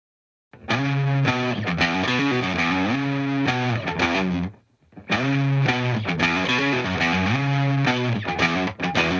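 An indie rock song plays loudly, driven by thick distorted guitar chords with a steady, full sound. The music briefly drops out about halfway through, then comes back just as dense.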